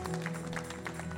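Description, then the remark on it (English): A church audience claps steadily for Jesus after a prayer, in a brief burst of applause, with a sustained low keyboard-like tone holding underneath. “A round of applause for Jesus. Jam your hands together.”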